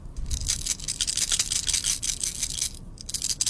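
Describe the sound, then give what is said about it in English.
Small hard Skittles candies rattle steadily as they are shaken in a hand, a dense, rapid clatter that pauses briefly before resuming. No one speaks. “It was Skittles shaking in my hand.”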